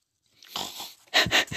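A dog gives a few short, breathy huffs and snorts, the last three bursts louder and quicker, with no one talking.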